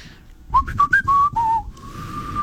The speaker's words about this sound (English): Like a whistle. Some people can't even whistle. Still. I don't whistle great. But you can?